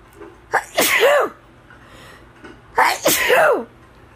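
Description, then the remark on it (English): A mother sneezes twice loudly, about two seconds apart, each a quick breathy intake followed by a sharp, explosive burst that trails off into a brief vocal tail. “Bless you, Mom.”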